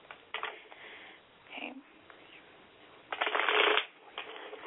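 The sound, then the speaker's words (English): A deck of tarot cards being shuffled for a tarot reading, with a few quick riffling bursts and a longer, louder riffle near the end; no one speaks. “Okay, as I'm shuffling the cards, again, please make sure that you say a prayer to yourself, asking that God and the angels come into this reading and reveal to you what it is you need to know about your love life.”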